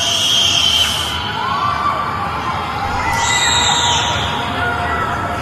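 A dense wash of many people yelling at once, echoing, with rising and falling cries standing out over a steady roar for several seconds: residents of a residential compound shouting across the whole area.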